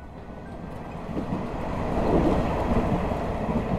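A train with a dining car rolls steadily along the rails on an April morning, a dense low rumble with a faint rhythmic clatter that swells slightly louder midway and holds, continuous, with no voices.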